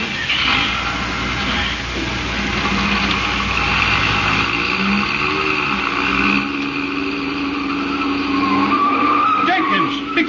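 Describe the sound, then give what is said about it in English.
Car tires screech loudly as a chauffeur-driven car takes a sharp corner on two wheels, a sustained high squeal over a rumbling engine, sweeping in pitch as the car swings around before easing off near the end. “You turn that corner on two wheels.”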